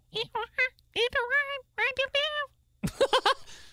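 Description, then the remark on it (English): A person imitates a monkey with a quick run of high, hooting 'ooh-ooh-aah' calls in several short bursts, ending with a sharper, screechier flurry, fairly loud. “A monkey would probably be like,”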